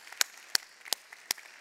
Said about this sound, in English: Mike Camden, let's give Mike Camden a round of applause. He's our campus pastor.